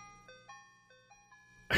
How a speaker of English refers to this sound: I look outside. They show up. I just see an ice cream truck. They really have the music on, though.